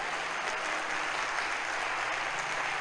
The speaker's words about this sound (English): No, clap well, because it will be your turn soon.